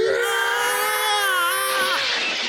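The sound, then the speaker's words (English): A stock male death scream sound effect known as the Howie scream, from the film Broken Arrow: one loud, sustained, strained yell held for about two seconds before its pitch drops and breaks off. No one speaks. “it's a stock sound effect that was used for his death in Broken Arrow”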